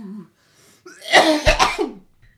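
A short, harsh burst of coughing, two or three rough hacks in quick succession, loud, preceded by a brief low vocal sound and a quiet pause.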